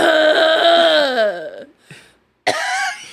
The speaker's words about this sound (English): I'm coughing like a toddler. Like tongue fully out. Eyes wide and red.